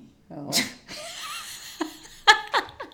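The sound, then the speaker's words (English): A dog grumbles in a string of low, throaty, half-voiced noises, ending in two short sharper bursts that stop just short of a full bark. “That did not go out into an all-out bark.”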